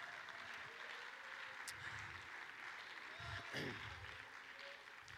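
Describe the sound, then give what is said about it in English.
A large church audience claps steadily together in worship, a dense, continuous patter of many hands, with indistinct voices mingling underneath. “Clap your hands and lift up your voice and let's thank Him.”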